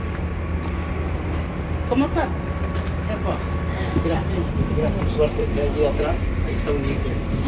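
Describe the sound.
Steady low engine rumble and hum fill the interior of a bus as someone boards it, with indistinct voices murmuring and occasional clatter.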